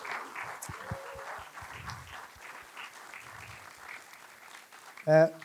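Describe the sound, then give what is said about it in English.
A crowd claps for an event's supporters and sponsors in a steady, dense patter for several seconds, then a loud, high cheer or whoop rises above the applause near the end. “So can I get a round of applause for all these wonderful people that don't have to do that?”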